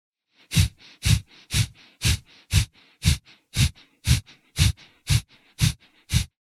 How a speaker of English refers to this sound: And then as you exhale, the navel center contracts. And this is the proper way to breathe. And so just doing nice, relaxed breathing like this is a way to learn how to control the breath. But breath of fire is just kind of a rapid movement of this.